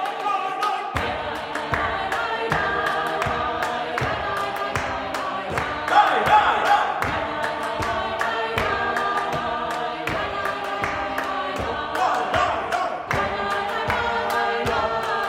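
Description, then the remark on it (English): An a cappella choir sings a recomposed synagogue melody with whoops over a steady, driving beat of hand claps and foot stomps. It sounds loud and lively, like a party. “He flipped the melody on its head and then added whooping and clapping and stomping.”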